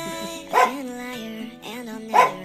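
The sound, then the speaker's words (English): A female dog barks twice, the sharp yelps about a second and a half apart, with a thin whining tone carrying on between them; clear, with no talking. “We got her barking over there.”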